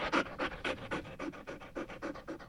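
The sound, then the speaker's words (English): A recording of a dog panting, played by a Google smart speaker when asked what sound a dog makes: quick, steady breaths, roughly three or four huffs per second, each a breathy rasp. It is fairly quiet, with no talking. “This is a dog.”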